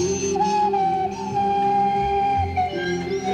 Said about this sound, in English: Now share with that special someone the sensual sounds of the romantic slide whistle.